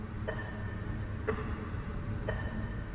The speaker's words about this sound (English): Sellafield has its own soundtrack. In some facilities, there's sort of a confidence alarm, something that just ticks and beeps.